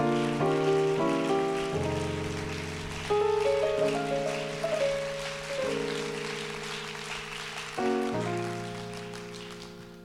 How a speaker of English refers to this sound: wonder if we could clap our hands again to the Lord.